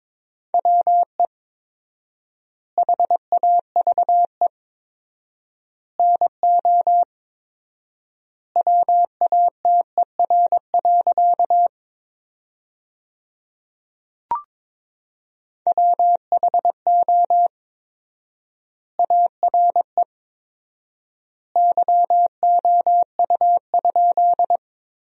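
Morse code sent at 22 words per minute with four-times word spacing, forming sentences from the top 100 words, on a single steady, mid-pitched beep, with short bursts of dots and dashes grouped into words separated by long silent gaps. No one speaks.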